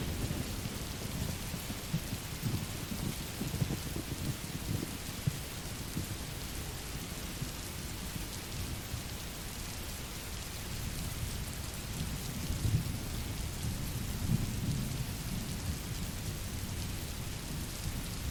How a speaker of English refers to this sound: So as all the cars are passing by, I'm here hiding from the rain, and do you know what? It's getting harder.